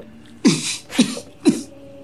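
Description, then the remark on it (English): Three harsh, raspy coughs come in quick succession, evenly spaced about half a second apart, each a loud burst that trails off into breathy noise, with no talking. “Now cough.”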